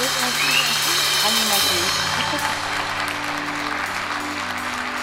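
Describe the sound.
A crowd claps steadily for the full five seconds, a dense wash of hands with voices murmuring underneath and a low sustained tone running beneath the applause.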